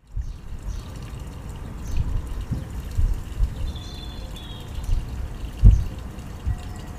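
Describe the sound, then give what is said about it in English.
Water trickles and splashes steadily from a water pump in a small garden pond, heard through an open window, a soft continuous burble with occasional louder drips, while faint birdsong chirps. “So maybe you can hear some birds, and certainly I think you can hear the water. There's a pond in my garden with like a, not a waterfall, but and not a fountain.”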